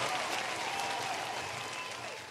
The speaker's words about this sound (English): Come on, give me a round of applause.